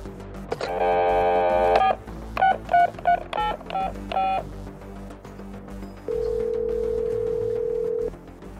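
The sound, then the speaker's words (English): A phone line tone, then a quick run of five or six dialing beeps as a phone call is placed, followed by a steady ringing tone lasting about two seconds, all clear with no voices. “All right, so let's try to get Jake on the phone.”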